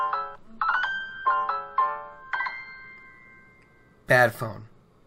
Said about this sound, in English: Bad phone. Bad me for not putting it on silent. Oh, I'm sorry, guys. Nope, that's vibrate. There we go. That's mute.